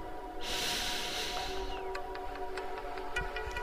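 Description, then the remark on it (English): A long, airy inhalation, a steady rushing hiss that swells and then tapers off, followed by faint clicks and quiet ticks with no one speaking. “Breathing in.”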